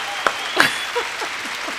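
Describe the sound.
A round of applause: a steady, hissy wash of clapping that runs throughout, with a few sharper claps standing out and brief voice fragments underneath.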